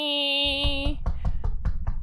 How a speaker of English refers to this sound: Just building the scaffold. He's out there. What the hell? What's that? You hear hammer.